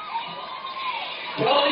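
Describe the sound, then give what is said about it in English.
A student section's crowd noise at a football game roars steadily throughout, a dense wash of many voices cheering and shouting, swelling louder near the end. “You know, you look at that student section, loud all night long.”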